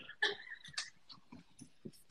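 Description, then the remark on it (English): A dog whimpers softly in the background, a few brief high-pitched whines and squeaks, with faint low murmurs underneath. “Families and dogs.”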